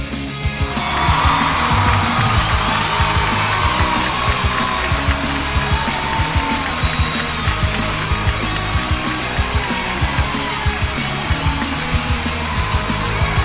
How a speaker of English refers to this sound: There we go. We're going to let the applause run.